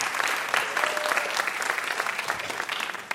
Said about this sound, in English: Thank you so much, Mike Pesca. Give him a huge round of applause for coming all the way down to join us.